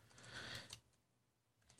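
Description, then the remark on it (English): Quiet, rapid clicking of keys being typed on a computer keyboard while writing code, a dense flurry of keystrokes that trails off into a pause before a few more taps, with no one speaking. “You also get to see how bad I am at typing.”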